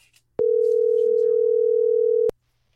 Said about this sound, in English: let's give our health reporter a call, Sonia Azad, to see if she answers the phone right now